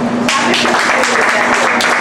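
audience clapping

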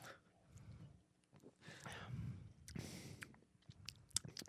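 sipping a drink

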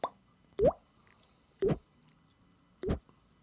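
water dripping

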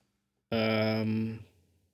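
sneeze

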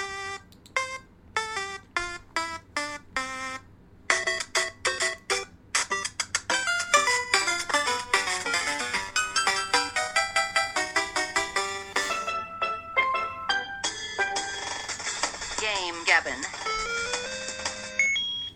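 timer alarm ringing

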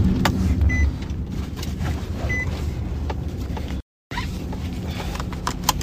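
car engine starting

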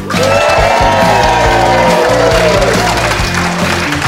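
audience cheering

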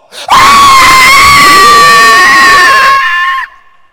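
woman screaming

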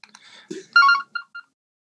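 phone ringtone

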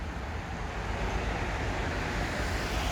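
car passing on road

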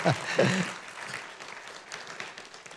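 audience clapping hands

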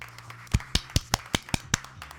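people clapping hands

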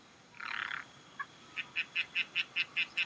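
tree frog croaking

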